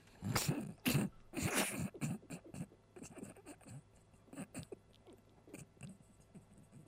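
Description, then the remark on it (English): A dog shakes its head, making a quick series of loud, floppy flapping and rattling bursts, followed by softer scattered snuffling and rustling movements. “Even the dog shaking its head no at that.”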